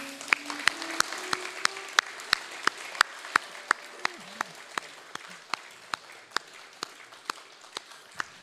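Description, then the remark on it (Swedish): Applause in a steady, rhythmic beat: sharp claps land at an even pace of about three per second for the whole stretch, with faint murmuring voices underneath early on. “Ska vi ge dig en skicklig klapp?”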